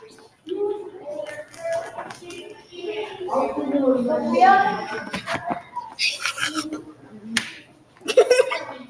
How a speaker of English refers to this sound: Okay, that's just me. I'm slapping my co-host.